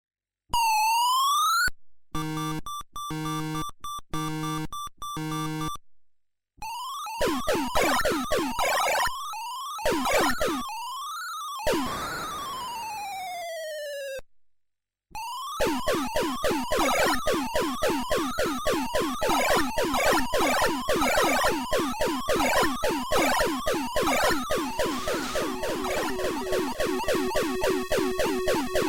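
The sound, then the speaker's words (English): Retro arcade game effects from gameplay of a Deco Cassette arcade game, generic shooting and explosion sounds: electronic bleeps, wavering siren-like sweeps and rapid repeated laser zaps, with a brief noisy explosion burst, all synthetic and fairly loud, with no voices. “80%, 90% of the time that you hear the gameplay, it's very generic shooting sound, very generic explosion sound.”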